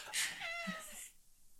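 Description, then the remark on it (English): A single short, high-pitched cat meow with a slightly falling tone, preceded by a breathy burst and followed by quiet, then a brief abrupt noise at the very end. “The cat agrees.”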